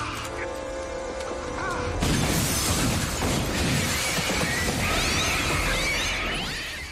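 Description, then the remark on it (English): A heavy .50 caliber round, about six inches long, slams into a bulletproof glass window with a sudden, loud crack, followed by several seconds of dense, harsh crunching and shattering noise. “It's quite bulletproof because it just beasted a 50 caliber shell like it was nothing.”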